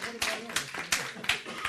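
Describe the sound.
Steady rhythmic clapping, about five sharp claps spaced evenly over under two seconds, with a faint voice murmuring beneath.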